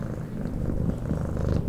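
A cat purrs steadily, a low, rumbling, continuous vibration with a slight pulsing rhythm, heard alone with no voices.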